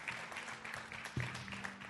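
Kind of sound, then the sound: crowd, audience hand clapping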